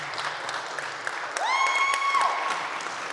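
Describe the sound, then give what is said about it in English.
An audience claps steadily throughout for the musicians after a hymn, a dense patter of many hands, with a sustained high whistling tone rising and holding briefly in the middle before fading back into the applause. “And if I was sitting with you guys, I'd give them a great hand of applause.”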